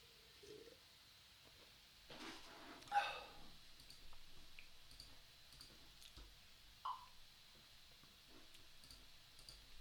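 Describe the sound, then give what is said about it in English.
A shot clock countdown timer, started for a 15-minute Q&A session, ticks away softly, with faint, fairly even clicks over a quiet background, broken by a brief whooshing burst and a short chirp partway through. “So I'm going to put the shot clock on for Q&A right now.”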